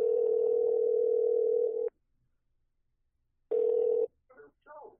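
A steady telephone tone hums loudly for about two seconds, stops, then returns briefly, followed by a couple of short, warbling electronic bursts, as a call is placed to a listener's mom in Michigan.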